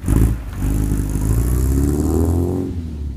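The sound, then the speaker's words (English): An old engine, either a 1956 Ford tractor or a 1967 Volvo sports car kept in running order by a Maine maker, runs steadily with a rough, throaty rumble and clattering mechanical knock, briefly revving up near the start and again toward the end, loud with no talking. “Like a working 1956 Ford tractor or a 1967 Volvo sports car that Waldeyer keeps in perfect running order.”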